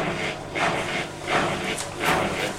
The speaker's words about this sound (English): Is it a washing machine that sounds like Danny Dyer saying, come on then?